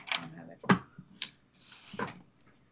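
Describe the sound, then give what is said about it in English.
Cards being shuffled for a Rebel card reading: a handful of quick, crisp riffling bursts and sharp snaps separated by softer rustling, all fairly quiet. “The shuffling is happening as we speak. I could hear the shuffling.”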